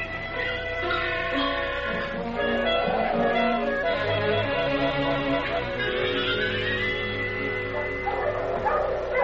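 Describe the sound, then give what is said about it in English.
A pack of sled dogs barks and yips excitedly together in a continuous, overlapping chorus, loud, with high-pitched yelps and whines mixed through the steady racket. “Talk to the dogs.”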